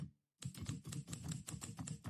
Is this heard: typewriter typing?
yes